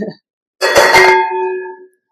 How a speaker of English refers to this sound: Wow, church bells for you. Because I need all the blessings I can get.